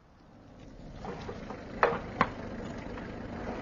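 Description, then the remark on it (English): A car drives up to the Villa Genevieve, bringing Giraud with Jacques Renaud and two gendarmes; its low rumbling engine and tyre noise swell steadily, followed by two sharp clicks or knocks as it comes to rest. No one speaks. “A car's just driven up.”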